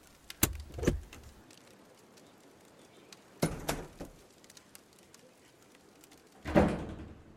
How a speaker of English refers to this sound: With a clunk, swoosh, and clatter, you opened the common room door into the hallway.